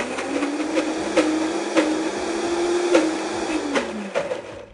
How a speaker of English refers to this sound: Now at this point, I'm going to go ahead and add a little water if I need it. First, I'm going to start blending though and see if it's thick enough.